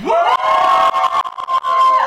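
A live audience cheers and screams loudly for about two seconds as a vote for the film Coyote Ugly, a sustained wall of voices with a few brief dips before swelling again.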